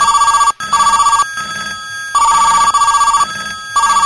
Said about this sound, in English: You guys heard that foghorn, and the phones are ringing off the hook.